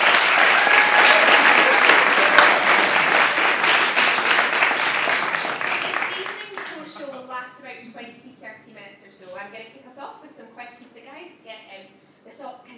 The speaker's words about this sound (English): I'd like to give a very big round of applause.